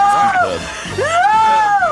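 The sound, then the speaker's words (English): A crowd screaming in an 18-certificate horror film: several high, wavering shrieks overlap, swooping up and down in pitch, loud and sustained across two seconds over a babble of voices. “That's what the horror crowd's like.”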